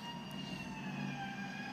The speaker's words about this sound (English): Stupid ambulance.